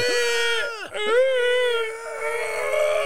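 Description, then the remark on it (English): A person imitates the shrill, piercing scream of a monster from a low-budget film: a sustained, high wailing cry with two quick downward pitch swoops early on, then a steady, grating screech held for about three seconds. “I will also say the screams of the monster are fucking horrible.”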